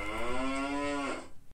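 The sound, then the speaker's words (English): A single cow moos once, a loud, drawn-out low call lasting about a second that tapers off at the end, with no one speaking. “We'll prairie until the cows come home.”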